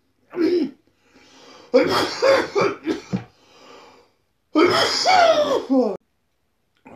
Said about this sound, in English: For the love of Christ, stop fucking coughing, man.